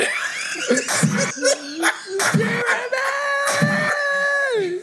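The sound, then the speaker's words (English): A man screams while falling, a long, wavering, high-pitched wail that slides up and down and then drops off, loud, with brief bursts of other voices or noise cutting in. “You can literally hear him screaming.”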